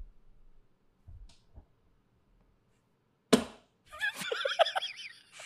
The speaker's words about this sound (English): It was very loud. It Boom. Was a glass. It was a glass carafe of like filled with water, and he slammed it on the table so hard that I was like actually a little